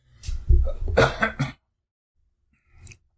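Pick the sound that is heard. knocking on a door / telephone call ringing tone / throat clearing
throat clearing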